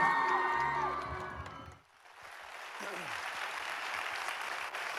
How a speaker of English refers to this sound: Give yourselves a massive round of applause, Peterborough.